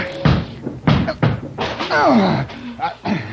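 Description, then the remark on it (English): Heavy blows batter a locked, solid door, four loud thuds in quick succession as someone tries to break it down, followed by a strained voice and a final knock. “I'm going to break this door down.”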